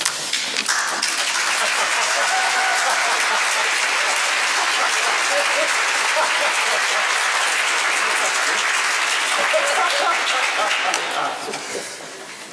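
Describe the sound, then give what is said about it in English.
Sustained, loud applause from a large audience, a dense wash of many hands clapping at once that holds steady for about eleven seconds before tapering off near the end. “It may not always be easy, but I hope it will be full of joy and some clapping.”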